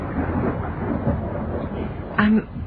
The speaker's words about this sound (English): I'm sorry. I was distracted for a moment. It must have been the thunder.